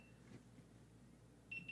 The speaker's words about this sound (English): Signing off from Boulder, Colorado. Beep, beep, beep.